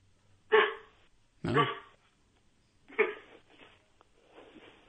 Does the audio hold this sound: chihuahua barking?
yes